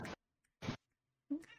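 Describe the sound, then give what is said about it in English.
Three short meow sounds, each separated by a brief silence, fairly loud; they sound like a person's voice imitating a cat, with the last meow the strongest and most drawn out. “Meow. Meow. Meow.”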